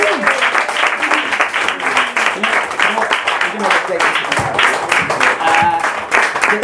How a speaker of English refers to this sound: We just want to say thank you so much for checking us out and to making our 100 and 101st episode really special. So give yourselves a round of applause as well.